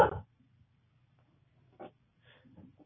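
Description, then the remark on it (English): A dog in a forest, on the other side of a fence, barks once sharply, then again more faintly a moment later, with a low steady hum running underneath. “A dog out here? He must be lost.”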